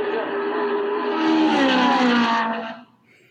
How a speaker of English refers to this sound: Okay, obviously a race car on a racetrack.